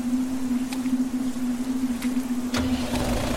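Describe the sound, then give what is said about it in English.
A tractor engine drones with a steady low hum, broken by a few sharp mechanical clicks, then a deeper rumble swells in near the end as it revs up. “I heard the tractor start and turned around to see Julia just as shocked as I was.”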